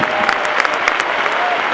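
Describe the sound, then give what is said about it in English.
A crowd claps steadily, many hands overlapping into a dense, continuous wash of applause with a few sharper individual claps standing out. “I wish I had somebody just clap your hands like it's 1982.”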